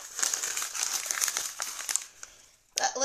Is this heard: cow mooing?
no